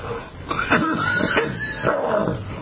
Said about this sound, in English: Excuse my cough there, people. I'm taking all my supplements, but all the talking that I'm doing is making me cough, and I don't have time to hit the mute button.